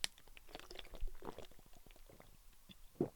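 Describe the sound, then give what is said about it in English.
Someone sips and swallows water: a quiet run of wet mouth clicks and small gulps at an irregular pace, ending with a brief voiced exhale. “With that being said, drink some goddamn water right now. I'm gonna join you, actually. I have water to the side of me.”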